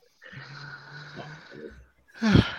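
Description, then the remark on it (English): A drawn-out yawn: a long breathy exhale with a low voiced groan lasting over a second, ending in a louder, abrupt huff of breath. “I heard a yawn there.”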